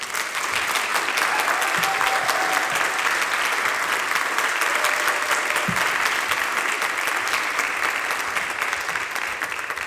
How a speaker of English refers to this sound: But let's give her a little round of applause.